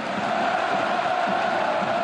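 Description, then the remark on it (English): A huge stadium crowd of about 80,000 German Dortmund fans screams Christian Pulisic's name, roaring in one dense, unbroken wall of noise from the stadium's so-called yellow wall. It holds at a steady loudness for about two seconds with no clear individual voices. “And when 80,000 German fans scream your name, you better deliver.”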